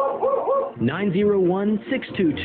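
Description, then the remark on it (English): A dog barks and yowls in a few drawn-out, whining bursts, fairly loud, with a thin, band-limited sound like it's coming over a radio. “I'm the only one who understands dog language.”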